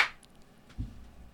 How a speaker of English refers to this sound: Here's clap, another edit clap.